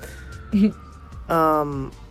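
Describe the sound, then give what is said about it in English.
An ambulance siren wails steadily, muffled as it passes outside, while a voice briefly breaks in over it. “sorry, there was just, you know, ambulance.”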